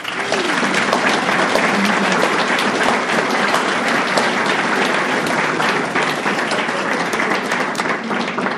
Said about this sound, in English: One more round of applause, please.